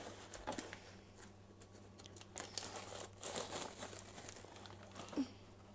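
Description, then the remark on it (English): A hot popcorn bag is pulled open with several seconds of papery crinkling and rustling, with irregular crackles and a few sharper rips over a low steady hum, and no talking. “Every time you try to pull it open, it's so blazing hot, can't even want to.”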